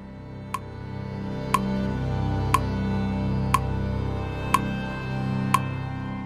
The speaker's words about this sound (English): When we come back, the clock begins ticking, and Bayard begins to organize.